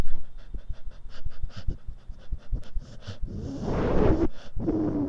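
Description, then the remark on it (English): A dog named Petunia pants rapidly and steadily, quick rhythmic breaths repeating throughout, growing a bit louder and more strained toward the end with a short whine or squeak. “I'm going to get my dog's opinion.”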